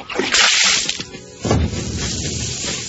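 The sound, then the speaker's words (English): A bucketful of bath water is thrown onto a TV to put out a fire in a loud splash, then a second sloshing surge follows about a second later, trailing into a dripping, hissing wash. “He threw the water on the TV and all the lights went out in the house.”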